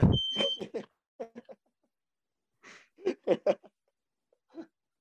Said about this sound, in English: oh, my smoke alarm's going off. 1 second.